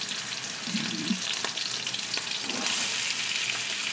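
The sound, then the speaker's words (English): Beef and onions sizzle steadily in an enamel Dutch oven as the meat starts browning, a dense hiss with a few sharp pops and faint clinks, growing slightly louder near the end. No one speaks. “I'm going to add this into my enamel Dutch oven along with my onions. You should hear a nice sizzle because we want this to start browning right away.”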